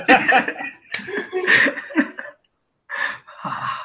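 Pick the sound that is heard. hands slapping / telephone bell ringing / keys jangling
hands slapping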